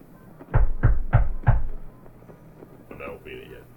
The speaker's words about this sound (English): There's no answer at the door when you knock.